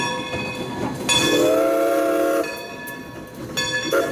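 A train rumbles along the tracks, with two loud, steady horn blasts sounding over the rolling noise of the cars. No one speaks.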